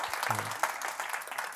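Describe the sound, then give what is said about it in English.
Steady applause of many hands clapping in a dense, continuous patter, fairly loud throughout, with a brief low murmur near the start. “Yes, yes, claps.”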